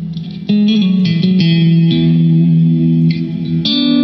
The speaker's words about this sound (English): that's the plate reverb turned off and the delay turned off, so you've just got an octave reverb and a particle reverb on at the moment.